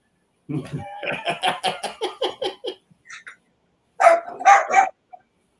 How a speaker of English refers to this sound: A wild pack of wieners on the loose. I know. I hear that guy barking in the back. One mention of Slapaho tribe and the black wiener goes crazy.